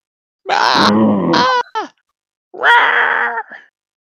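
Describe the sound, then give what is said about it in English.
A voice imitates the mighty scream of the last remaining goblin: two loud, raspy, strained bursts of harsh growling, the first long with a short tail, the second after a pause, with no words. “There's one of these goblins left. He lets out a mighty scream.”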